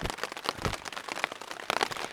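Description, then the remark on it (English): Steady rain patters on a tent during a trek on the GR10, a dense wash of crackling drops with brief louder splashes scattered throughout. “As you can hear, I am genuinely intent and right on time because the rain started a few minutes after I arrived.”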